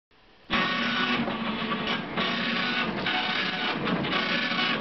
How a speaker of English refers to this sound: This clunky telex machine, archaic machine now, designed to receive words or text from a dedicated telephone line. In this case, at the Treasury Department of the United States. The machine is burping.